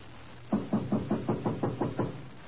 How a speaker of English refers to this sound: Shall we knock or force our way in? I will knock.